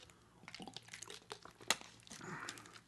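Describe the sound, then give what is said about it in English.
Someone takes a drink of water, with a plastic bottle crinkling and crunching in sharp bursts, then a soft swallow near the end. No talking. “But one second, some water here.”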